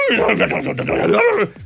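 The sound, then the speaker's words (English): A person vocally imitates two dogs barking and fighting with an unknown animal in a yard at 1 in the morning, a continuous burst of snarling, yelping noises lasting under two seconds, loud. “Dogs started barking, screaming.”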